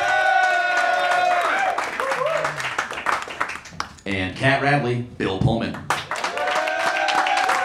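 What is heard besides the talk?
audience applause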